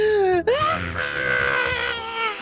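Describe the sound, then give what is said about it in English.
A voice imitates a blood-curdling shriek: a loud, shrill wail that slides downward, breaks, then swoops back up and holds a high, wavering pitch for about two seconds. “and then there is another blood-curdling shriek that comes from way above you guys.”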